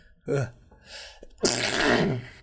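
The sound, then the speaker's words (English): A big sneeze: a couple of sharp, wheezy inhales build up before one loud, explosive burst that trails off over about a second, with no talking around it. “Big sneeze, man.”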